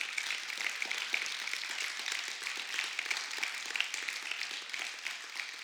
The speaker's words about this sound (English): So I'm going to ask, if you have ever served in the military or are serving now, would you go ahead and stand with me? Go ahead and stand. There you go. Yeah, you can clap.